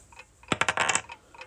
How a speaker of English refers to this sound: I've got to roll these, have I? Yes, roll them. I haven't got much space for these dice rolls. Yes, I know.